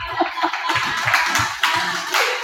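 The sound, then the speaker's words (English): A group breaks into steady applause for a person who recited the Great Commission Bible passage, a dense patter of many hands clapping at once, fairly loud and continuous throughout, with a few duller low thumps mixed in. “So, clap for him.”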